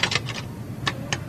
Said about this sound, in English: I just hear tons of typing.